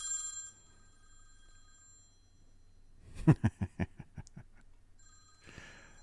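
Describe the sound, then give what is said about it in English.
A telephone bell rings in one short burst of rapid metallic strikes that fade over about a second. It is fairly loud, with faint steady tones before and after and no talking. “Okay, you want to take a phone call?”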